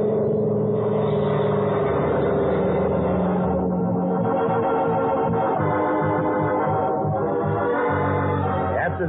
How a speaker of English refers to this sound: Once I get the engine started, I'll switch on the landing lights. That ought to do it.